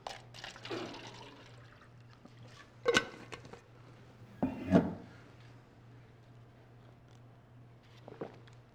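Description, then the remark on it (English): Water being poured into a glass by the speaker for themself, with a couple of brief clinks and splashy bursts over a steady low hum, no voices present. “And if you're not there, I will give you some time so that I can pour myself some water.”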